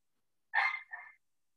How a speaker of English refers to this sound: Sorry, my dog is barking.